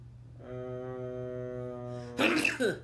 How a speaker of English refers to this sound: bless you.